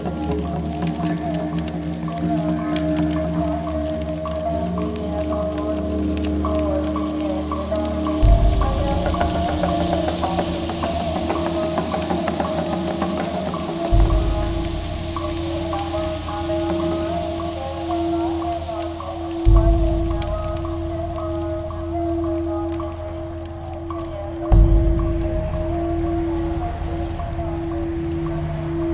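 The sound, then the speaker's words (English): A Himalayan singing bowl resonates with a steady, humming ring and layered overtones, swelling afresh about four times at intervals of several seconds across nearly half a minute, with no talking. “So that is a Himalayan singing bowl.”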